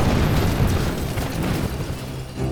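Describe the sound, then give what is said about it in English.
A loud explosion roars with a heavy low-end rumble that stays dense and sustained throughout, swelling slightly again near the end, with no voices present. “Using the shock of the explosion, I ran up behind one of the figures and stabbed him in the neck.”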